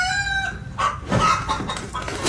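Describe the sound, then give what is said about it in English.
A rooster-crow alarm clock rings: a loud rooster crow, its harmonic call stretched in a rising then falling cock-a-doodle-doo, followed by a burst of clucking and squawking, with no voices. “That's a cool alarm clock.”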